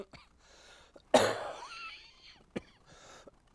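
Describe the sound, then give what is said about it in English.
A person fighting a flu bug lets out a loud, harsh cough that trails into a raspy throat-clearing rumble, followed by a couple of short, sharp coughs spaced apart; no talking. “my cough and my constantly clearing my throat and so forth, but I'm fighting this flu bug or whatever it is,”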